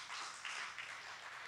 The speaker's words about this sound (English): Amen? Oh, that's a good place for more than one person to be clapping.